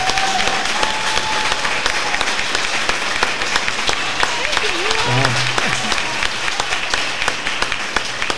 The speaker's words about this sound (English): That is going to wrap up this District 4 City Council candidate debate. Can we give a round of applause for both of the candidates one more time?